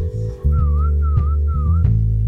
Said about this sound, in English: And hopefully people are hearing that whistle.